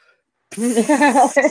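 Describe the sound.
A voice mimics the hiss of a spray-tan nozzle: a short, breathy, voiced spraying noise lasting about a second, fairly loud, with a brief second burst at the end.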